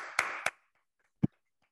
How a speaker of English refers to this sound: So we'll give it. And we'll follow it with a little applause.